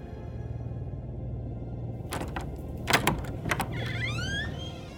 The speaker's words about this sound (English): as Zagreus lay in bed, he heard his bedroom door creak open